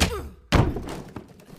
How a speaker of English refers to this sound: I busted through the door. Third time was a charm.